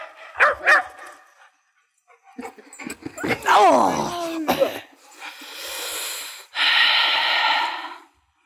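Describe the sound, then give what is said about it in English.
A dog at a flag-raising ceremony, running across a field and jumping into a council officer, gives a couple of sharp barks, then a string of excited yelping whines, followed by loud, rushing bursts of heavy panting and snorting breath. “I know I shouldn't laugh, and I will say, for all the solemnness of the occasion, to have a dog run across the field, jump into a council officer, and then for the bugler to carry on playing straight afterwards, absolutely.”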